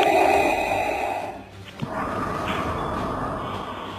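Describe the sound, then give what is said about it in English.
Someone breathes heavily and raspingly down a phone line, loud, with a steady hiss broken by a short pause partway through. No one speaks. “you'd answer the phone and someone would breathe quite heavily down the phone to you”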